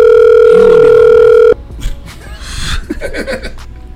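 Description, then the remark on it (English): A loud, steady phone ringback tone from an outgoing call sounds for about a second and a half, then cuts off abruptly, followed by people talking and laughing. “Alright, so I guess I'm calling this nigga answering the phone.”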